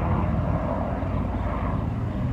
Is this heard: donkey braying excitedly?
no